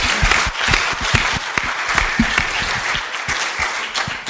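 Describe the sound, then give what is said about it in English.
A panel event audience claps steadily for the founding members' work, a dense wash of many hands applauding at full volume for several seconds with no talking over it. “I think that we need to give them another big round of applause for the work you've done.”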